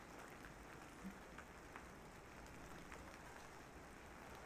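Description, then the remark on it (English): Steady, soft rain falls throughout, a continuous hiss with faint scattered pattering of drops, fairly quiet and even, with no voices. “I don't want to be touching whatever's raining on us right now.”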